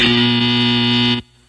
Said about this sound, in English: And hit the buzzer.